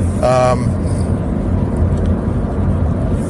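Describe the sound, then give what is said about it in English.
A single short car horn honk, bright and buzzy, lasting about half a second, followed by a steady low rumble of road and engine noise. “I don't know why he honked at me.”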